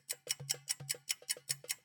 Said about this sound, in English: The clock is ticking. Can you hear it?